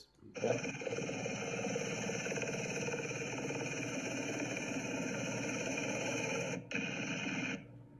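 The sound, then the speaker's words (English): A loud, steady roar of a low-flying helicopter coming across a bridge, with a rapid low rotor chop and a strong high whine, holds for about seven seconds, dropping out briefly near the end before cutting off. No one speaks. “How low is the helicopter coming across that bridge, right?”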